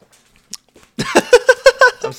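A dog roughhousing nearby: after a near-silent moment, a rapid run of about six short, voiced yips and grunts comes up close and loud in a quick rhythm.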